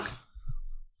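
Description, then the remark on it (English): A single sharp sneeze bursts out, a quick hiss of breath that cuts off fast and leaves only a low, quiet rumble behind. “Bless you.”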